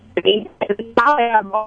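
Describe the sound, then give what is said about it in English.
A voice comes through a thin, narrow-band phone line, the speech arriving in choppy bursts separated by abrupt little gaps, as if the connection is cutting in and out. “All right, your phone's breaking up a little bit, so I'm going to give you a second to get that together.”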